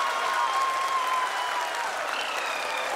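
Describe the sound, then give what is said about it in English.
Sustained applause from a large audience as ISRO achieves a soft landing of its lander on the moon, a dense steady wash of clapping at even loudness throughout, with a faint tonal whine running beneath it. “People are applauding.”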